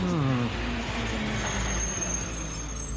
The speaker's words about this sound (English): He claims that in the wee hours of December 10th, a truck arrived by the little used back gate of the base. It was covered in a thick tarp, and whatever was underneath looked to be conical in shape.